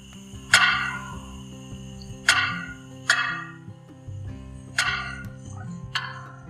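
A wild turkey hen clucks five times, each call short, sharp and fairly loud, spaced at irregular intervals over a steady low background hum.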